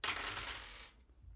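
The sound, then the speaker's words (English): Three dice are rolled, clattering and rattling across a hard surface in a bright, jumbled burst lasting just under a second, then settling into quiet with only a low background hum; they land on 2, 4 and 1. “So why don't we roll 3 die and then you can eliminate the lowest one.”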